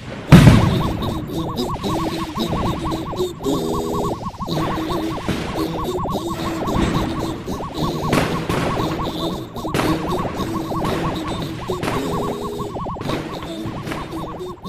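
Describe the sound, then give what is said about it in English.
Large rockets fired by men in World War II footage whoosh off and burst in a dense, continuous barrage of loud cracks and blasts over a steady droning tone, with no pauses across the stretch. “stock footage from World War II shows men firing large rockets that, when fired at the UFOs, seem to be no more than firecrackers.”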